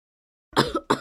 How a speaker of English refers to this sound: I was coughing, but oh my God.